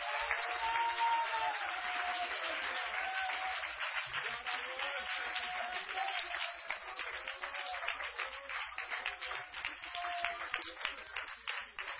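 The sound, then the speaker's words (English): An audience at a church service claps hands to God steadily for about twelve seconds, a dense, continuous patter of many hands, loud and unbroken, with faint tonal sounds beneath and no speech. “Oh, come on, clap your hands and shout aloud to God.”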